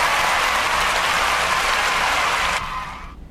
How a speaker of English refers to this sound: Yo, yo, yo, let me get the crowd cheering in here.